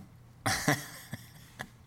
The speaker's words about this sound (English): I was yawning and coughing at the same time.